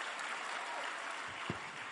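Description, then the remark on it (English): Steady crowd applause for the astronauts, a dense hiss of many hands clapping at an even level throughout, with one slightly louder single clap standing out near the end. “Clap for these wonderful astronauts.”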